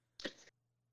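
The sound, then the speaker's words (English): A single sharp sneeze bursts out, a brief explosive rush of breath lasting about a third of a second, followed by quiet with a faint steady hum. “Bless you.”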